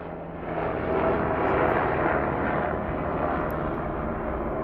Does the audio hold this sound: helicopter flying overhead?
yes